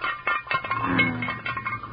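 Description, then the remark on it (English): Chicken leg bones clink and rattle in a frying pan, a quick, irregular run of hollow, tinny knocks with no voices over them. “The bones sure sound hollow in that frying pan.”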